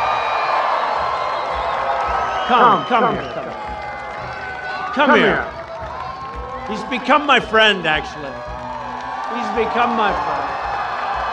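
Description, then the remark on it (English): A large crowd at a rally cheers and applauds for Senator Lindsey Graham, summoned to the podium by Trump, in a steady wash of noise while a man speaks over a loudspeaker, his voice rising above the roar in short phrases. “The crowd cheered and Graham beamed.”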